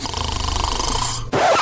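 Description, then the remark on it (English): A loud, rattling snore with a deep, rumbling drone, then an abrupt shift into a harsher, noisier snort as the breath turns over. “Tired of coming home to a relaxing and uninterrupted night of sleep where literally no one snores loudly?”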